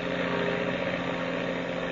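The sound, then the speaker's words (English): An airplane engine roars at full throttle, a loud, steady droning hum with a buzzing, rumbling tone that holds constant throughout, with no voices. “I'm opening this throttle wide, Steve.”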